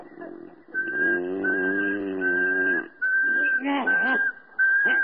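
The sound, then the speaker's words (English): A steady whistle held on one unchanging pitch, repeated in several long stretches with brief gaps, over a low, rumbling voice-like murmur underneath. “They say if you whistle in a monotone, maybe that'll work.”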